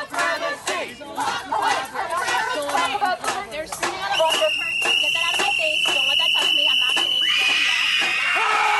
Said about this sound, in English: Jesus Christ, I'm gonna have to turn the volume down. This is where I start screaming.